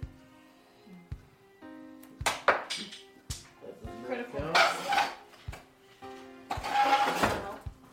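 Rolled dice miss the dice tray, clattering and bouncing across a hard surface in a series of sharp, uneven clicks and rattling bursts, with a low background hum and faint voices underneath.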